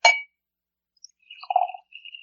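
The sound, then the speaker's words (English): A sharp glass clink rings out, then after a short pause a drink is poured to refresh someone's glass in a soft, burbling trickle that changes pitch as it fills. There is no talking. “You refresh your glass.”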